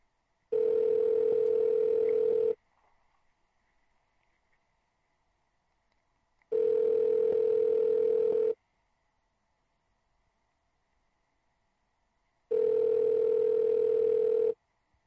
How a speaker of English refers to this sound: Pick up the phone